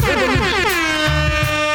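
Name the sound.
air horn sound effect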